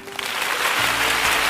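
An applause sound effect: a burst of dense, steady crowd clapping with a bright, noisy texture, fairly loud, running continuously through the short moment with a low hum underneath.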